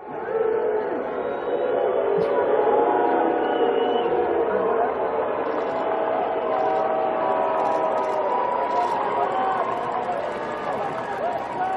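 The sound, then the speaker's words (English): A coronavirus-reduced stadium crowd in Kansas City at the season opener between the Chiefs and Texans boos players locking arms in a social justice display, loudly and steadily, a dense, sustained roar of many voices with long, low drawn-out tones that never lets up, and no single speaker stands out. “They had a coronavirus reduced crowd in Kansas City for locking arms in this social justice display, and they got booed for it. Here's what the scene looked like.”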